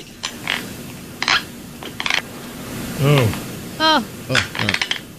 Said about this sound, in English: Also, we hate the sound of teeth grinding. Oh, yes. Oh.